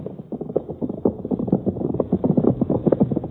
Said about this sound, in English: Betty Marbury urged her horse to a dangerous speed across plains broken by gopher holes. Behind her thundered the horses of Bart Benson and Butch.